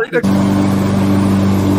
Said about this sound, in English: It's right next to the lawn. Don't ask. What are you, mowing the lawn? You never saw that. This is me mowing the lawn.